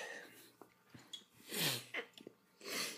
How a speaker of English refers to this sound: If I could do a little double dip, a little sip of the community water. Yeah, let me swish and then spit in there for you. Right into the spittoon.